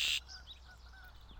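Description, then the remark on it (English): A red-winged blackbird sings in tree branches: a loud, buzzy, high-pitched burst at the start, followed by a few faint, thin whistled notes over quiet outdoor background. “And in the branches above them, there's a very handsome red-winged blackbird singing a very pretty song.”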